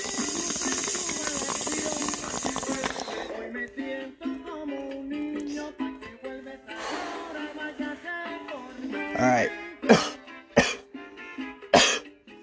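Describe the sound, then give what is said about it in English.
Harsh, wet coughing after a hit of Diamond OG cannabis from Duber 805: a hissy stretch and some throaty, strained breathing build into four or five loud, spaced hacking bursts. “That ain't a dry cough, I can tell you that.”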